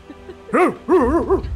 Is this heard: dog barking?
yes